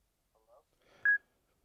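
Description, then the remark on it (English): A brief burst of phone keypad dialing as a phone call is placed: a few soft, warbly tones lead into one loud, clear electronic beep lasting a fraction of a second, then silence. “So let me get him on the phone.”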